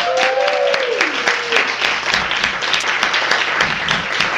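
An audience applauds steadily for several seconds to welcome six contributors at a literary reading in Los Angeles, a dense patter of many hands clapping at once, with a brief falling whistle-like tone at the start and a low hum underneath.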